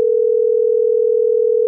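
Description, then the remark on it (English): A steady, continuous telephone dial tone hums at a constant pitch for nearly two seconds as a phone call is being placed, loud and unbroken, with no voices or other sounds. “So I have his phone number. We're going to give him a call right now.”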